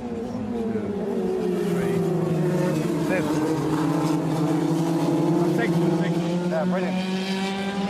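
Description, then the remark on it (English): Loud, steady engine drone with harmonic whine holding across the whole stretch, racing cars circling a track during an F2000 championship race, pitch rising slightly then settling, with faint chatter underneath. “With the race underway, Michael watches on.”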